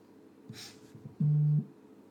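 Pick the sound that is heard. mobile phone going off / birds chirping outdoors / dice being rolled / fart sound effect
mobile phone going off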